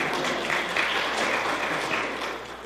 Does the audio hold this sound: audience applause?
yes